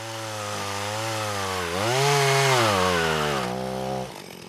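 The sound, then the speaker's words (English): A chainsaw drones steadily as fallen trees are bucked into about 8-foot lengths during cleanup at Scotty Creek, its engine pitch climbing as it bites into wood mid-cut, then settling back down before easing off at the end. No voices. “Yeah, so we were bucking the trees up into about 8-foot lengths.”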